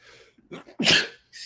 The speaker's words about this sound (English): Excuse me. Not mean to sneeze there.